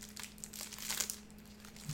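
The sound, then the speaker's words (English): A Whatchamacallit candy bar wrapper is opened with a few seconds of crisp, irregular crinkling and rustling bursts, no voices, over a low steady hum. “let's open it up”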